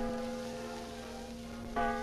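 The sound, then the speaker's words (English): An ancient clock in a jailhouse strikes 10 with deep, ringing bell tones, one long resonant chime fading before a second strike rings out, its humming overtones lingering. No voices are heard. “While Lance Arnold and his men rode with Mary toward the abandoned mine that was the gang's hideout, the Lone Ranger and Tonto sat in the jailhouse and listened to the ancient clock strike 10.”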